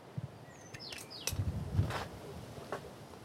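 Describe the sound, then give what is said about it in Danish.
Solvej, a female blackbird, one of a pair, gives a few short, high chirps and whistled notes in quick bursts, moderately faint, with soft outdoor rustling and low background rumble and no talking. “Solvej, det er vores solsorte hund. Vi har et par, Solvej og Skallenæb.”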